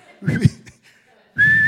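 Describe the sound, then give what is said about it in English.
A person whistles a single sustained, fairly loud high note, mimicking a falling missile. A short burst of voiced sound comes first, then a brief pause before the whistle. “You know who invented that whistle on a missile?”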